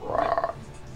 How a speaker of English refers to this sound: bunch of freaking frogs over here just repeating what each other says.